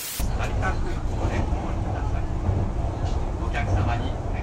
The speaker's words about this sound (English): That sound in the background is a very, very fast train barreling through the countryside of Japan.